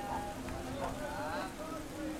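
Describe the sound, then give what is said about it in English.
Torrential rain pours down over empty city streets in a steady, dense hiss that fills the whole clip, with faint muffled tones and murmuring drifting underneath. “Though the torrential downpour had emptied the streets, the festival carried on indoors.”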